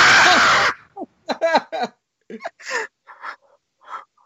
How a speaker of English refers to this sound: Oh, sweet baby Jesus. Oh, get ready for the scream, guys, because here it comes.